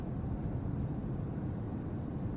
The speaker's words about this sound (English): All you hear is the engine of your car and just wind. Nice soothing hum of the vehicle is deeply relaxing.